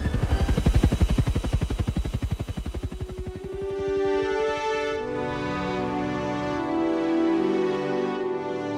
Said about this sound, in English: the evac helicopter started making its way up and out, the two men trailing behind like sinkers on a fishing line. And then it proceeded to get the hell out of there, about as close to the speed of heat as a shot-up helicopter could go.